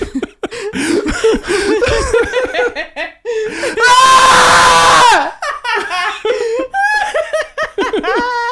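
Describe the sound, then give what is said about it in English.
Several people let out a loud, sustained scream together for about a second in response to a secret word being said, with laughter and lively chatter right before and after it. “For the rest of the episode, whenever somebody says the secret word, you have to scream.”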